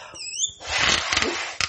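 A small rubber balloon squeaks in high, wavering, rising tones for about half a second, then gives way to a loud, breathy rush of air and rubbery rustling.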